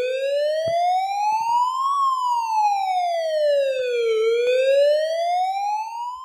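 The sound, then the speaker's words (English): A loud emergency siren wails on its own, its pitch rising slowly, falling back down, then climbing again in a steady, drawn-out sweep with no voices present. “Emergency sirens worthy.”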